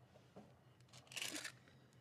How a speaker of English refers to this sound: Hold on, let me grab this shit. That's the wrong mint case. Hold on. You hear me shuffling through my bag right now.